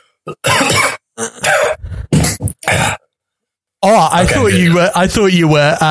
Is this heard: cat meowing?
no